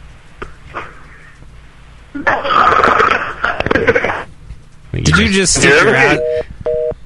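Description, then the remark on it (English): Muffled, garbled cell phone line noise crackles and rustles in two loud bursts, probably from a cell phone held down the front of a caller's pants, then two short electronic beeps sound as the call drops. “Yeah, that was probably his cell phone down his pants.”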